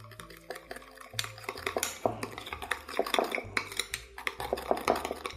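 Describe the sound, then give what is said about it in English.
A utensil stirs sesame oil, sugar and Diamond Crystal kosher salt together in a bowl, with a steady run of irregular clinks and scrapes against the sides at moderate volume, and no one speaking. “Stir those things together.”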